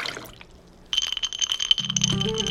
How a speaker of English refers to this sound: glass, ice, pour.